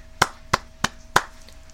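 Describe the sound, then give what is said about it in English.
Four sharp hand claps in a steady, slow rhythm, each a crisp snap with a short ring, from a single person applauding with no talking. “Now, first of all, I gotta give him a round of applause.”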